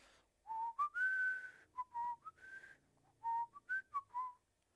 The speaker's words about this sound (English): When I hear people whistling, sometimes it kind of annoys me, but you know, I can see why they do it now, because I I whistle sometimes.